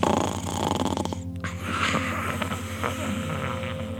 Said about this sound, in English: Slowly, his eyes close, he collapses onto the ground, and he immediately starts to snore.